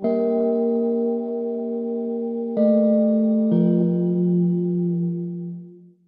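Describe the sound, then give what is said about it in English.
A short piece of music played to accompany Beaumaris Castle: deep, ringing bell-like tones like a tolling bell sound three times, each long and humming with rich overtones, the last note lower and slowly fading away. No voices are heard. “it sounded like a tolling bell.”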